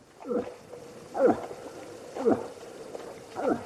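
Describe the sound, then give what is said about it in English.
A moose calls four times, each a short, reedy moaning grunt spaced about a second apart, fairly faint and thin against a soft outdoor hiss. “Despite its enormous size, I was surprised to discover that the elk has a somewhat feeble call.”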